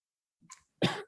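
A short, soft catch of breath followed by a single loud, harsh cough from a person about to speak, with no talking around it.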